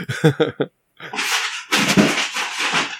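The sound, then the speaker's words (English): Cats in another room yowl in three short, tonal bursts, then a loud, noisy stretch of scuffling and hiss-like thrashing follows after a brief pause. “That was cats again. I don't even know they're in the other room.”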